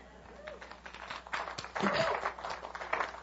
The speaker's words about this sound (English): Let's practice real quick. We got to do better than golf clapping. Okay, come on. Ready? One, two, three. Here we go.